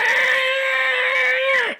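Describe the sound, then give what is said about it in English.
A human voice imitates a whale call with one long, high, moaning tone, held steady for nearly two seconds before sliding down and cutting off. “I like that my whale impersonation was good enough for you to think that that's what I was doing.”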